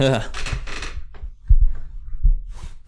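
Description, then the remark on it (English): A chair gets shifted around, with brushing scrapes and a couple of dull, low thumps against the floor, after a brief vocal sound at the start. “How can I even show this? Oh, fuck this chair.”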